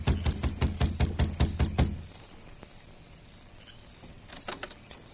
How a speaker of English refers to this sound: His jaw set, he climbed the steps, crossed the porch, and knocked on the door.